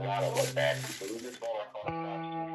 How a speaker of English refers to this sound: If you've been listening closely to this audio, you might hear some sounds in the background. Someone else in the room is shuffling papers and taking notes.